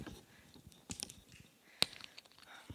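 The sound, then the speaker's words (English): Quiet sipping of water by a speaker pausing a sermon at a pulpit: soft wet mouth noises and small gulps spread over a few seconds, with a sharp little click or clink partway through, and no talking. “I'm just going to have a drink of water.”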